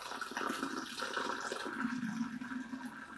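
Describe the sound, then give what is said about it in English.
Chai poured from a height into cups for aeration, a steady, bubbling splashing stream of liquid that runs unbroken for a few seconds, loud, with no voices. “That, listeners, is the sound of chai pouring into cups.”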